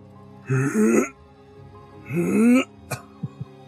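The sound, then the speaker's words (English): Two harsh, gagging retching bursts from beneath a den, each about half a second long and fairly loud, with a raspy throaty tone. A few short faint clicks follow. “you might hear some of this kind of like, almost retching happening from beneath this den.”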